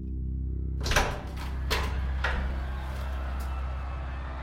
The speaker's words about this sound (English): I nodded again, and my master opened the door of our building.